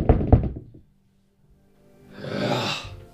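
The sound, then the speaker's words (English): A quick series of knocks on the door of a peasant house, about four or five sharp raps close together, followed by a pause and then a soft, breathy rush of noise. “Knock on the door.”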